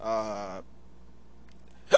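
human body sound, hiccup

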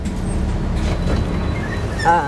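vehicle, bus ride

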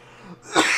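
human body sound, cough

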